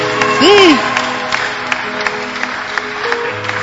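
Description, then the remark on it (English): An audience claps to God in uneven, scattered bursts, moderately loud, with a brief rising-and-falling vocal whoop near the start and a low murmur of voices beneath. “The clapping that you're clapping to God, God is saying, ah, my children, I will do some for you.”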